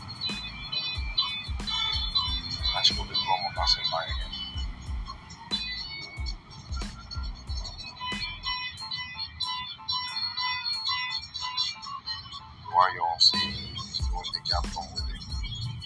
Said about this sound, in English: That's why you hear the car siren.